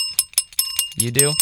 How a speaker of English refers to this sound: Is that you? You gotta stop with the bell.